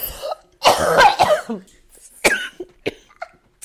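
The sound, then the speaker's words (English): A burst of harsh coughing: a long raspy cough fit followed by a few shorter, scattered coughs and throat-clearing sounds, with no talking. “The coughing's coming.”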